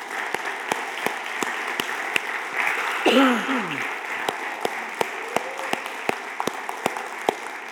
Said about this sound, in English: But because they are the most thankless group of servants in this church, could we all just stand up and turn around and face them and just applaud these guys for the work they're doing?